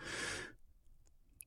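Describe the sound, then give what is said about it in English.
A single voiced, breathy exhale, the 'WH' breathing sound of the name YHWH, lasting about half a second and fairly loud, ending abruptly and followed by near silence with faint small noises. “WH sounds like exhaling.”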